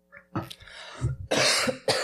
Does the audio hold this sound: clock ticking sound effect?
no